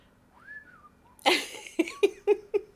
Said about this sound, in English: What are you whistling? I don't know.